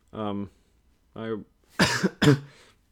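Two short voiced throat noises, then two harsh coughs in quick succession from a single person, with no talking around them.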